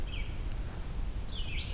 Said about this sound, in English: Black-throated green and red-eyed vireo.